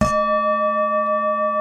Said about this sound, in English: When I hear the bell